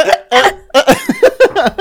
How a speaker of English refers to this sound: Hold on. Do you want me to cut all your hiccups from your recap and then just put them all at the end? So embarrassing.